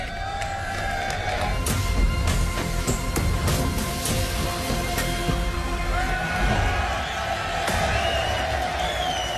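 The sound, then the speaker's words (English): A large crowd cheers and shouts excitedly at the reveal of the red and black Ferrari 2023 Formula One car, a dense, continuous roar of many voices with scattered whoops and sharp bangs, fairly loud throughout. “Crowd excited, getting the first look at the car.”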